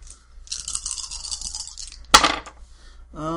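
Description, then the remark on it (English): Four dice rattle steadily as they're shaken for over a second, then a sharp clack as they're tossed and clatter briefly across a hard surface; a voice starts right at the end. “Yeah, resolve plus composure. So four dice.”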